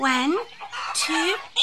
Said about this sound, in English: the chickens push and flap and flutter around their legs and try to jump over each other to get to the food first.